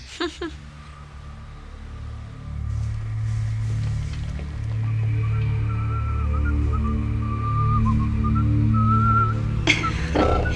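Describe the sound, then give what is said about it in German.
A man whistles a wandering tune while mucking out stalls in a horse stable, the notes rising and falling over several seconds above a steady low rumble of background noise. “Er pfiff diese Melodie, die er immer pfeift.”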